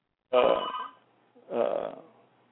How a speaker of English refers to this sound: And as much as we refute, you have to forgive me for this phone ringing here.